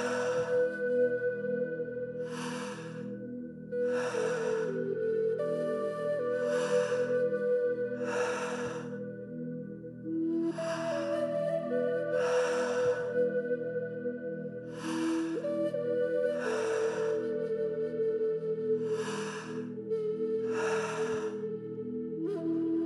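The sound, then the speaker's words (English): Forceful, deep breaths come in a steady rhythm of sharp inhales and exhales, loud, over a sustained background of droning music, during a guided breathing exercise. “Just staying focused, your breathing, the sensations you feel in your body.”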